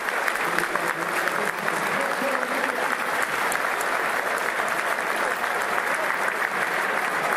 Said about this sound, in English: Obiang is coming on. Let's see who the change is for. Lanzini's coming on. Off, rather. The big applause. And Obiang's coming on.